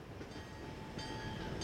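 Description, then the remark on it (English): A steady rumble of a train rolling along the rails on Basin Street in New Orleans, with a faint metallic whine riding above the low roar and no voices. “The railroad tracks ran along Basin, the main thoroughfare of Storyville,”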